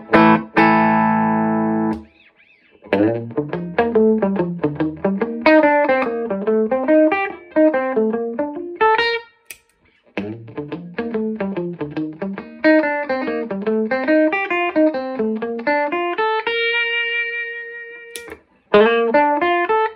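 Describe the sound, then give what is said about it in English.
Electric guitar on the neck pickup played through a Klon overdrive pedal switched on, into a 67 Deluxe Reverb amp with a Vintage 30 speaker and only the amp's reverb: a driven, mid-heavy tone running rising and falling arpeggiated phrases with a few held chords and brief pauses, loud, no voices. “Here it is on.”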